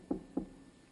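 Two quick knocks on wood, evenly spaced, with a dull low thud to each, followed by quiet.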